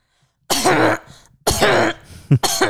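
A dog's harsh, honking goose-like cough from a collapsing trachea, loud, in three long hacking bursts with a short sharp hack between the last two, and no talking.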